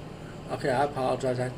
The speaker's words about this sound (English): I have the air conditioner on, so the sound might be a little loud. I apologize if it is.